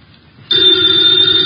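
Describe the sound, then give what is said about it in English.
After a brief near-silent moment, a telephone bell suddenly starts ringing in Nero Wolf's office in a radio drama, loud, its bright metallic clatter sustained steadily until the end. “Ladies and gentlemen, the ringing of that phone bell brings you mystery, adventure.”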